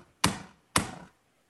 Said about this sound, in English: That you hear a rapping on the door.